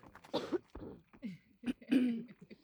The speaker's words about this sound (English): Coughing break. Okay. Edit it out.